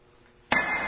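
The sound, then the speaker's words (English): After a brief near-silence, a hammer strikes metal once with a sharp, loud crack, followed by a bright, high metallic ring that sustains to the end. “No, it's hard to hold it and swing the hammer.”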